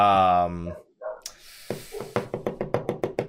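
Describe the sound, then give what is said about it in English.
A dog lets out a quick, steady run of sharp barks, fairly loud, after a brief voiced sound and a short hiss. “It's not the dog next door, by the way. No, he just knows the answer.”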